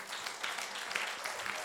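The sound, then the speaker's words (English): A church audience claps their hands to the Lord in a steady, dense patter of many overlapping claps, a fairly soft wash of applause with faint voices mixed underneath. “Clap your hands right now to the Lord.”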